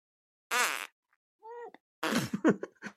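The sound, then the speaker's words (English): A mouth-made fart noise produced by squeezing the lips: a buzzy burst of squeezed lips, then a short higher squeak, followed by a longer sputtering, flapping raspberry, all loud with no talking. “Hang on, the first one wasn't just like a fart noise, because you pulled your lips in a certain way.”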